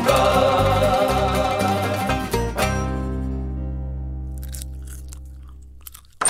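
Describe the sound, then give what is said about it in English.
Loud, dense crunching of Pringles potato crisps for a couple of seconds, then a sudden drop into a steady low tonal hum that slowly fades, with a few faint clicks near the end. “Are those Pringles?”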